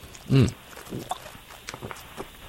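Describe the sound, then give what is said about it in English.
A brief, loud slurping sip of Kirkland purified water from a just-opened bottle, with a throaty, pitched edge, followed by a few faint gulps and small clicks. “Let me take a sip of this and see if it tastes like lead.”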